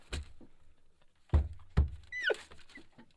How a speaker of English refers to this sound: Stop banging the table.